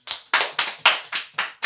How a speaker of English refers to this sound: should do a clap from behind our mics, everyone.